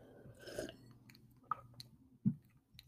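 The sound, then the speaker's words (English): Quiet slurping and wet mouth noises from iced coffee being sipped, followed by a couple of distinct gulping swallows, with no talking. “I need another sip of my iced coffee.”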